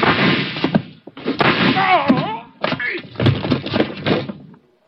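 A door slams, followed by a loud jumble of crashing, breaking clatter and heavy thuds as a lamp is knocked off a table and a man hits the floor, with a brief shout mixed in, in several dense bursts before falling silent.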